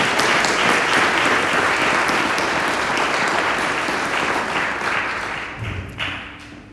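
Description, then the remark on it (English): An audience at St. Andrew's Church breaks into sustained applause for a guest after a prayer, dense overlapping clapping that holds steady for several seconds before thinning out and fading near the end. “Let's give it a round of applause, shall we?”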